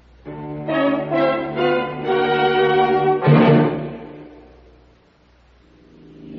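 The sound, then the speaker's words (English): Cars, called treasure cars in a Fram treasure hunt filter advertisement, drive past with loud, droning engine tones; one sweeps by with a rushing whoosh and fades away, then another begins approaching at the end. “There goes a treasure car. There goes another. And another.”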